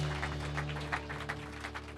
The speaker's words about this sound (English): Let's give a hand applause to our Lord Jesus Christ. Un aplauso a Cristo.